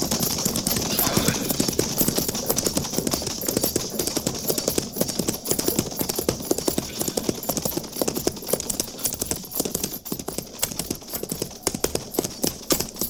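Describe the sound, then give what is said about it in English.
Horse hooves gallop in a fast, steady drumming rhythm, fairly loud throughout, with no voices over the pounding beats, as a single rider approaches on horseback. “Captain, single rider approaching.”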